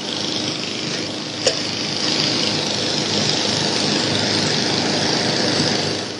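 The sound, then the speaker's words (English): The small gasoline engine of a 1971 Sears Craftsman lawnmower drones steadily, a continuous buzzing roar with a brief sharp click early on, running at constant speed. “The 1971 Sears Craftsman lawnmower.”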